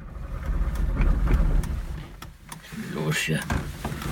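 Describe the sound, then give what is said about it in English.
An old East German car engine, which at first would not start, finally starts and rumbles low and unevenly with a few sharp clanks, then fades slightly as muffled voices and a brief whining tone come in near the end. “At first, we couldn't get his old East German car to start. But then, finally, the motor started running.”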